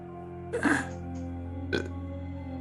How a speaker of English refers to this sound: She burps a little bit like she's gonna throw up.